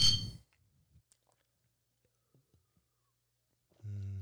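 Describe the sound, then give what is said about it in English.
A sharp clink of beer bottles knocking together in a toast rings out at the start, one a Real Ale Oktoberfest, followed by quiet handling sounds and a voice coming in at the end. “So yeah, I drink cheap beer too. It's okay. Yeah. But cheers. Cheers.”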